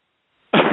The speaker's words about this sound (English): Just take a deep cough